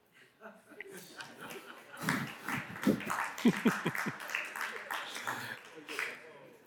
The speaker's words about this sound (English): Yeah, he gets the applause.